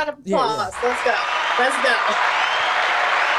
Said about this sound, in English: And she said, round of applause